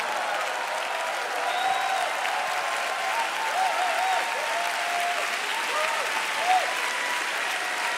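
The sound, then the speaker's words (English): An audience claps steadily and continuously for the full stretch, a dense even wash of many hands at moderate loudness, with faint voices rising now and then beneath it. “I thought you'd be standing up and clapping.”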